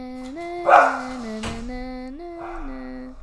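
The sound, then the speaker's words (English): A dog barks in a long, drawn-out, whiny vocalization that rises and falls in pitch for about three seconds, with no talking. “Okay, go bark real quick”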